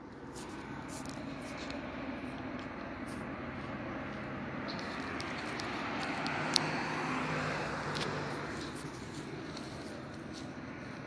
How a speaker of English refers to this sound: The helicopter is flying directly over Euclid, where I am standing at the ATM Euclid One food store, beer and wine at 603 South Euclid.